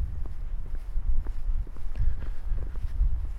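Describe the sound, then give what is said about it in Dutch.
Steady footsteps walk along an outdoor surface at an even pace on the grounds of a prison, heading to barrack 1B, each step a soft thud over a low rumbling background of open air. “En ik ben op weg naar barak 1B.”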